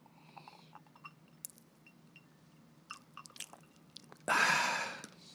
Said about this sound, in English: excuse me, just sipping on the last of my tequila.